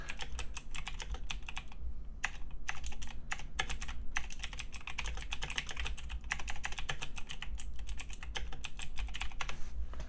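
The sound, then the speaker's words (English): Rapid, continuous clicking of keys on a computer keyboard as someone types a message, fairly loud, with brief pauses between bursts over a low steady background hum; no one speaks. “So I'm going to write it in the Discord. Prepare for typing”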